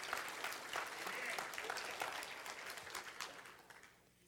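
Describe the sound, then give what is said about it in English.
A church audience claps their hands to thank Jesus for forgiveness, a dense, steady wash of overlapping applause that holds strong for several seconds before thinning out toward the end, with a few voices mixed in underneath. “If you're grateful today for that forgiveness, just clap your hand and thank Jesus.”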